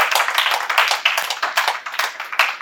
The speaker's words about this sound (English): Hallelujah. Oh, clap your hands unto Jesus.